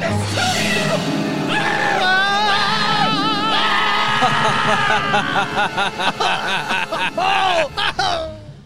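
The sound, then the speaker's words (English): A loud, sustained human scream with wavering, shrill pitch, breaking into shorter choppy yelps and gasps toward the end, intense. “That was a good scream, I think, on my end.”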